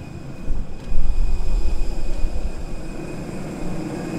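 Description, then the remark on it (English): A steady, loud low-frequency engine rumble with a broad roar and a faint high whine, consistent with a jet aircraft idling after landing at an airport in Namibia, continuous for a few seconds with no voices. “All right, we are off the plane walking into the airport.”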